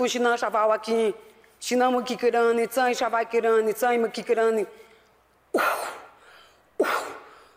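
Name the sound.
woman coughing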